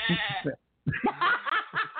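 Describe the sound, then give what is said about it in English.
A woman imitates a sheep, letting out a wavering, nasal bleat followed after a brief pause by a longer, quavering series of bleating cries mixed with laughter, fairly loud. “She let the sheep out.”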